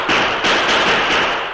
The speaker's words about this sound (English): And within a split second, the settlers, armed and shooting, emerged with guns flashing.